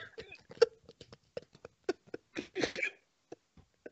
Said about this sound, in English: Oh, I got hiccups now. Fuck. No way. Shit, I got hiccups. No way. You got hiccups. Drink some water.